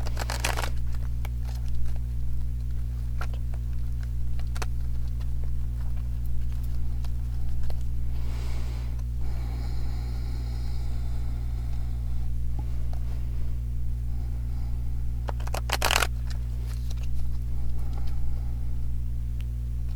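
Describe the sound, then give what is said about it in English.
A deck of cards being blessed and shuffled before a guidance card is drawn, with a few short riffling bursts and soft handling rustles in between, set against a steady low electrical hum and no talking. “I'm going to be quiet for a moment while I bless the cards and shuffle and everything, okay?”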